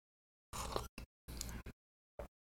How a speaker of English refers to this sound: Hold on, I got to sip my coffee here.